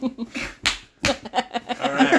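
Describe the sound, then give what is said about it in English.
Two sharp slaps of an open palm on someone's behind, as a 'good job' gesture, land in quick succession, loud and crisp, with voices talking and chattering before and after. “And nothing says good job like an open palm slap on the behind.”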